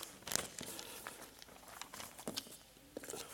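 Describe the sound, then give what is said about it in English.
Crisp rustling and crinkling of paper being shuffled and handled as someone searches for a piece of paper, with irregular bursts of crackle as sheets are moved around, no voices. “But I'm just looking for my bit of paper.”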